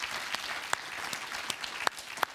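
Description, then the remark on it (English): Scattered applause: a few hands clapping in an uneven, sparse patter over a soft hiss, with several sharper claps standing out. No one speaks. “You deserve a round of applause for that.”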